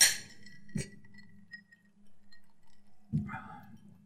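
Glasses clink together in a toast to Ed: a bright ringing chime at the start, a sharp clink shortly after with a lingering tone, then another clatter of glass near the end, with no one speaking.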